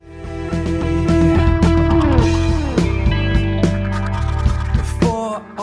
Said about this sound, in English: So now let's listen to the same part of the song, but with the drum tracks that drummer Jake Wood recorded, that we recorded in his studio. So let's give it a listen.